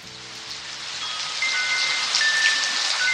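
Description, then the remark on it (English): Steady, dense rain from a midnight rainstorm in California falling in a continuous hiss, building slightly, with a few faint sustained ringing tones drifting through it. “… recorded this California rainstorm for a CD he calls ….”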